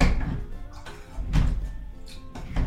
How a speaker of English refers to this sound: Okay, we've got the cucumber going in, we're doing a little bit of muddling. There's the lemon wedges, and okay, muddler. You can hear it.